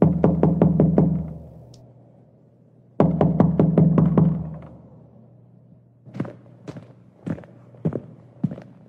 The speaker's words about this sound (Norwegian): Så bli med når vi kobler oss opp på internett og banker på den virtuelle døra